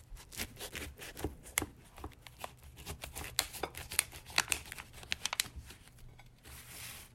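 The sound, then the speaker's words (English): Crisp crunching and scraping as a knife slices through a pie crust to serve it, a rapid run of short crackly strokes over several seconds, ending with a softer hiss of the blade sliding through. “Slice that shit.”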